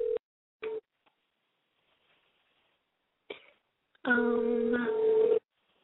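telephone keypad dialing tones

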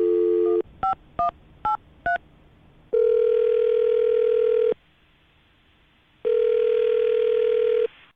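telephone being dialed

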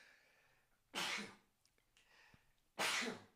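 sneeze

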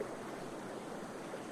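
river water flowing

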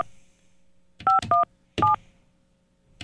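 telephone number being dialed

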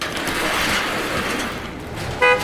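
truck horn honking

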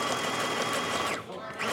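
sewing machine running

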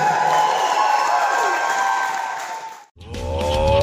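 crowd cheering and applauding

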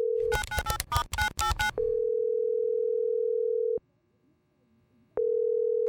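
telephone dial tone

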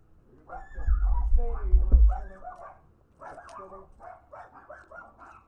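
dogs barking

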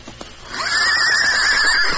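horse neighing

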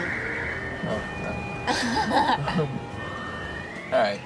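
siren going off

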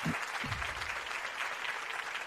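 round of applause

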